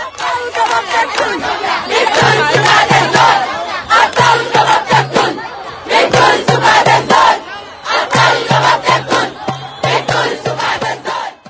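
A large protest crowd in Sudan, led by a protester standing on a car, chants against President Omar al-Bashir in loud, rhythmic bursts, voices rising together in repeated call-like phrases with brief pauses between them, dense and energetic throughout.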